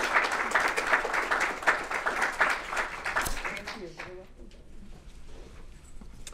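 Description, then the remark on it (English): A crowd applauds an award recipient at an awards presentation honouring companies, with dense, steady clapping for about three seconds, then the applause quickly fades out and gives way to a quieter murmur of voices. “So let's all give a big round of applause for them.”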